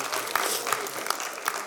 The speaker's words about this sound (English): Let's give him a big hand clap and thank him for it. Glory to God.